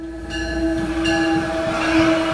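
Steel wheels of a MARC commuter train rumbling loudly along steel tracks on the way to Washington, D.C., heard from the platform, with a steady metallic ringing whine and a continuous low roar, no voices.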